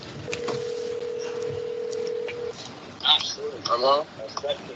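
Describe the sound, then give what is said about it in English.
A phone dialing over speakerphone: a steady electronic tone holds for about two seconds, followed by short, chirpy bursts of sound and faint background noise. “Okay, where your phones at? Get them out.”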